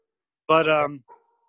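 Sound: dogs barking excitedly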